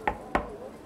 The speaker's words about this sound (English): Here's the Pullman Club. This is the right door, I think. I don't see a door knocker. Do we knock? We can try.